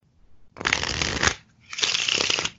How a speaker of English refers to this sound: So for a perfect shuffle, you split the pack exactly in two and perfectly interleave the two halves. So that's top card from the first pile, top card from the second pile, next card from the first pile, next card from the second pile, and so on.